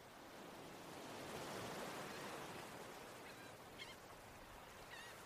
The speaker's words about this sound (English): All right, it feels so good hearing those waves and being back on this intention setting beach.